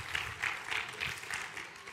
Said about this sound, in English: It was our strongest year that we have ever had, and I think we ought to give God a great hand clap of praise. Amen.